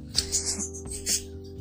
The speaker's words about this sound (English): Look, y'all hear my birds. Confirmation, okay?